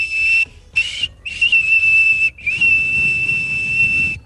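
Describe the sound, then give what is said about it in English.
A person whistles a high, steady 2600 hertz tone in four sustained bursts separated by brief pauses, the last one longest, with faint background noise and no speech. “Yeah, that was you whistling, right? Yes, absolutely.”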